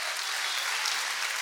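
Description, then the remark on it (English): An audience claps together in a steady, dense burst of applause, a bright crackling wash of many hands that holds at an even loudness throughout, with no voices standing out. “Come on, clap your hands.”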